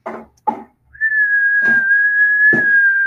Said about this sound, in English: I'm going to try to whistle. It's right there by you. Okay, whistle first right okay, now. Okay, here's me whistling without my mask.